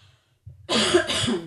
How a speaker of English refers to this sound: I'm going to do like the 2020 cardinal sin. I have to cough.